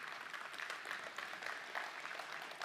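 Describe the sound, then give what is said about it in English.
An audience claps in a steady round of applause for the table hosts, a dense, continuous patter of many hands at an even loudness, with no voices standing out above it. “Can we just give them a round of applause, the guys that have been at these tables that have helped lead us?”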